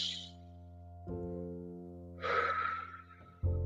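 A slow, deep breath is drawn in and then let out, audible over a steady low hum, with no talking.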